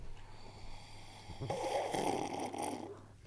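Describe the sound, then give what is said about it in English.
A slow, airy slurping sip of beer, a soft hissing draw of liquid lasting about a second and a half, with no talking over it. “But, like, if you actually do sip it, and you kind of get, like, I'll just do it with my beer, and you guys will be able to hear it ASMR style.”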